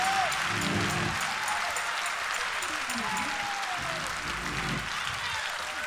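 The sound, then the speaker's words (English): An audience claps steadily in praise to God, a dense, continuous wash of hand clapping, with scattered voices and faint shouts mixed beneath it. “Clap your hand like the devil's between it and give God a praise in here.”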